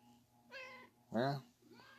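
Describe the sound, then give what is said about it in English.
A cat meows twice, a shorter call followed by a louder, drawn-out one, over a faint steady hum. “What's up, kitty? Wow. Wow. Wow. Wow.”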